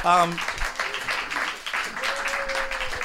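An audience applauds in a dense, steady patter of many hands clapping for about three seconds, with a brief tonal chime at the start and a faint held tone later on.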